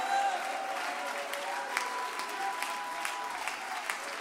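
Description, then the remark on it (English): A church audience jumps to its feet and claps steadily in a dense, continuous wash of applause, with scattered voices shouting and cheering over it throughout, staying loud and lively for the whole few seconds. “Come on, everybody, jump to your feet and clap your hands and shout, there's a great awakening coming.”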